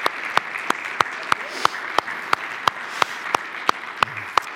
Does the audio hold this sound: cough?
no